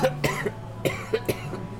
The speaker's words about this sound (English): And then a cough.